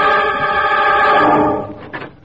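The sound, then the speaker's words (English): An apartment door swings open with a long, loud, steady creak lasting over a second, then a couple of quick clicks as it settles, with no voices. “I open my door and I smell burnt Italy.”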